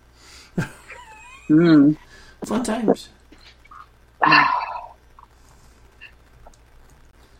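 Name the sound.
dogs barking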